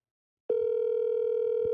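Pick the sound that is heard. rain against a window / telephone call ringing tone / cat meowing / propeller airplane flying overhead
telephone call ringing tone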